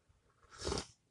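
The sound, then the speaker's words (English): A single short slurping sip of coffee, fairly quiet, swelling and fading within about half a second with no voices around it. “And if you hear sipping, guys, I'm sipping on some coffee.”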